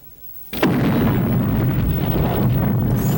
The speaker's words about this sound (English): Frame one. Nuclear explosion, eh? Yeah, totally.